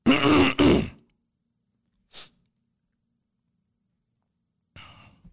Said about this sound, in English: I'm going to redo that and clear my throat.